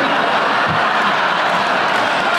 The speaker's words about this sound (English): Yeah. Your applause.